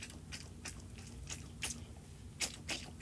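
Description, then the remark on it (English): Wet, squishy squelches from a squeezed, realistic-looking little frog toy filled with teal Orbeez water beads, coming in short irregular bursts with soft crackly detail over a low steady hum, no talking. “And next freebie is a little frog. It's kind of realistic looking, and it has some teal Orbeez in it. This is the sound.”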